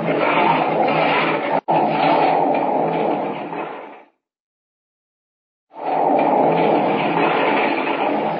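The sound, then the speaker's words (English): A loud, continuous rumbling roar of a rockslide, a mass of rock and earth hurtling down from the top of a mountain onto a trail. It cuts off for a moment of silence, then the heavy crashing roar resumes. “Down from the top of the mountain hurtles the mass of rock and earth.”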